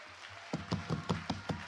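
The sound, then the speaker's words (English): A standing church audience claps in unison, about seven sharp, bright claps at a brisk, even beat that begins after a short quiet lead-in, with no voices. “Let's all stand and clap your hands.”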